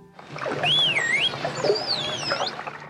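A high, swooping computer-generated whistle for "ball", produced by pressing a keyboard button, is followed by the dolphin Delphi whistling an imitation of the same rising-and-falling shape, both clear against a steady wash of underwater noise.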